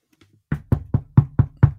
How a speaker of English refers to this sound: I'm knocking on wood right now. Do you have wood? That sounded like plastic. It's my wood desk.